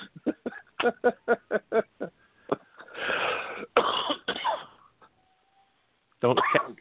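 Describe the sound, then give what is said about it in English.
A heavy, hacking smoker's cough: a rapid run of about eight sharp coughs, then a long raspy, wheezing fit, a brief quiet, and one more harsh burst at the end. “Don't cough up a lung there, smoker.”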